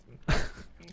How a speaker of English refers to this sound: You want to not chew it into the microphone? It's like you're chewing it literally in our ear.